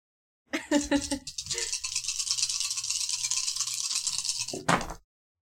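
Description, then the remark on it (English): Dice rattle and clatter in a steady, crisp stream for about four seconds as they are rolled for a physique roll in a game, starting with a few sharper clicks and ending in a brief louder burst before stopping; the roll comes up 4s and 2 nudges. “Okay, give me that physique roll. No use dice.”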